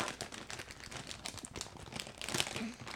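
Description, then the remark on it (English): Steady crinkling of a chip bag being handled and opened after being stabbed with a pencil, with dense crackles throughout and a louder burst of rustling near the end. “You stabbed it with a pencil? I just wanted to see if I could do it. Okay, looks like that was pretty easy to open.”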